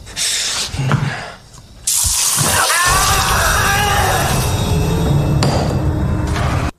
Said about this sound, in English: get maced with hornet spray, bitch. So now he can't see shit.